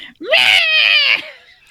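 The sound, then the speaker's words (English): A person's voice lets out one loud, shrill screech imitating a yowling cat. The screech rises sharply in pitch and holds for about a second before breaking off. “I really hope someone just clips on Twitch that cat scream for us”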